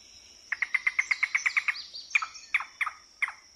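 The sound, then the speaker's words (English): A recording of a yellow-billed cuckoo, played by field researchers in wetlands to verify the species, calls alone: a rapid series of about a dozen wooden, knocking notes, then several slower, more spaced notes trailing off, clear against a quiet background. “A yellow-billed cuckoo. To verify that was what Celia heard, field researchers played this recording from the Audubon Society.”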